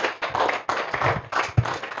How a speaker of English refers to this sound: I thought so you are clapping your hands.